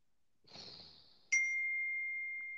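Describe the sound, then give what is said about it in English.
A soft rustling swish is followed by a single bright phone notification ding that rings out clearly and slowly fades. No one speaks. “No, that was Okay, my phone.”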